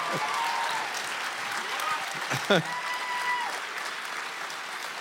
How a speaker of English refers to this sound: You don't realise that clapping is actually a group activity and it sounds much better.